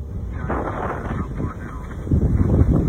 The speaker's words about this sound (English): In a video recently posted online by the Manti La Salle National Forest, you can hear gusts of wind as the Pack Creek fire burns a bright green stand of aspen trees. The smoke is billowing fast.